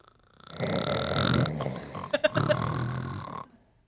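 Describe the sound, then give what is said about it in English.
A person imitates the grunting of Carl, a 13- or 14-year-old French bulldog, with one long, rough, throaty snort lasting about three seconds, broken midway by a few quick sputtering catches, then trailing off. “He was a French bulldog who was how old? Like 13, 14 years old.”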